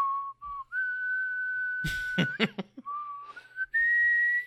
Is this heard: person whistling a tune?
yes